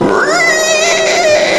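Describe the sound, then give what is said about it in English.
A loud, sustained, wavering screech with a harsh, yowling, catlike quality, made by a man as his jaws unhinge and his body morphs, rising in pitch early and holding steady throughout, with no talking. “The screech got louder as the man's jaws began to unhinge.”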